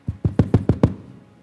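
knock on a door

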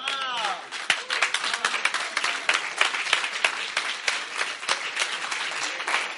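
audience clapping hands

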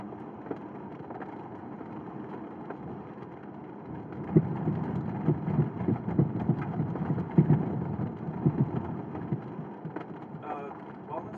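rain with distant thunder

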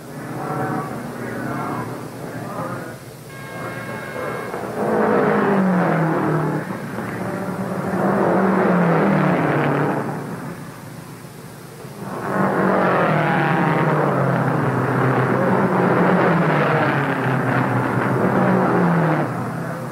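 race car pit stop

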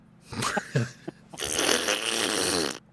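fart

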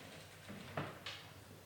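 door being shut

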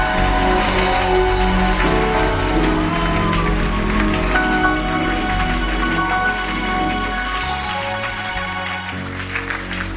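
audience clapping hands

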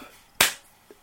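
clap sound effect

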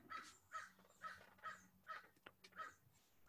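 crow cawing

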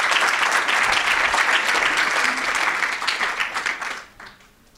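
audience applause

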